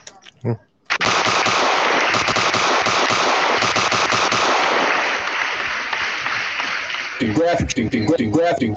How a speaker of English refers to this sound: Can we get some gunshots for that?